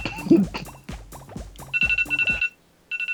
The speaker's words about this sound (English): There goes the timer.